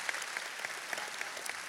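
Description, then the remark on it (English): A crowd applauds steadily after being asked to clap if they are not good with names, many hands clapping in a dense, continuous patter with a few sharper claps standing out every fraction of a second. No voices are heard. “Yeah, it's a lot of people clapping.”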